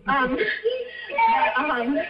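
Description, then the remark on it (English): A young child cries and screams in the background in high, wavering bursts that run almost continuously for about two seconds, fairly loud, with a whimpering, sobbing quality between the louder wails. “Sorry, there's a child screaming in the background.”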